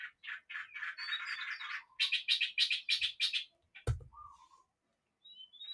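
Small birds chirp and trill in quick, bright bursts, a busy run of rapid repeated notes, then a soft thump and a few scattered tweets trailing off.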